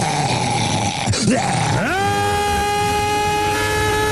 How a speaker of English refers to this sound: Those are all real Alex Jones screams. How has he not had a heart attack yet?